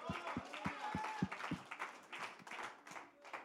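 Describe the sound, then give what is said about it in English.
A church audience claps in a quick, steady rhythm to praise the Lord, the sharp hand strikes sounding over a busy wash of voices and cheering that carries on as the clapping thins out. “In fact, why don't you stand across the building and clap your hands unto the Lord?”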